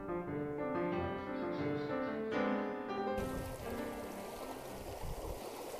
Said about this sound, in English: This is the Diamond Fork River, which is a tiny little thing. It's funny that it's called a river. It's a stream. Well, not right here, but in many places I could probably run and jump across it. Right here it's probably, 12 feet across, maybe 15.